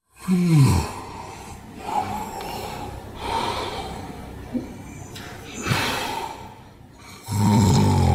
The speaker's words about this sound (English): let's compare Natalie's snoring to this recording that we have where it's a clear case of sleep apnea